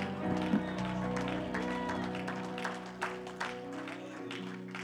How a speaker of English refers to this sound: Give the Lord a hand clap of praise tonight. Give him a shout.